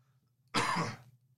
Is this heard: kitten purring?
no